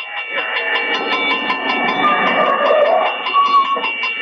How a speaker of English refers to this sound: There's a train coming.